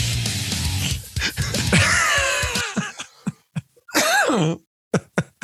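A run of short, harsh coughs and throat clearing, broken by a strained, drawn-out vocal groan partway through, then a few final sharp coughs.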